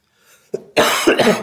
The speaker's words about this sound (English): Sorry, I got a cough.